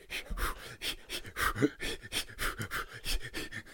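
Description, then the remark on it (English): A person imitates heavy panting, a quick steady run of harsh, breathy in-and-out gasps, around a dozen in a row with no talking. “I'm sweating. I'm breathing heavy.”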